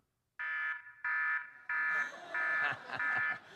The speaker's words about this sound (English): Now, when that goes off at our house, somebody will yell out, prayer alarm. And we just stop whatever we're doing for a minute.